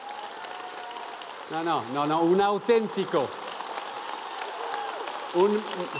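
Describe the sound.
Steady audience applause for Jesus fills the whole clip, a dense crackle of many hands clapping, while a man speaks briefly over it partway through and again near the end.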